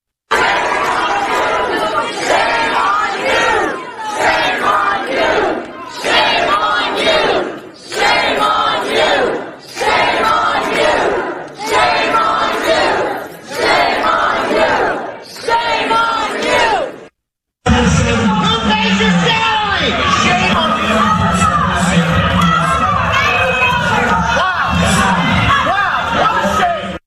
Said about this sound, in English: Now, let's go to the Loudoun County and listen to parents very emotionally yelling at school board members.